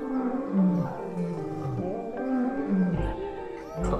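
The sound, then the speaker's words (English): Three lions growl and roar together while eating a woman on the floor, in a low, rumbling, overlapping chorus, with deep guttural snarls rising and falling throughout and a louder surge near the end. “There's a woman on the floor being eaten by three lions actively.”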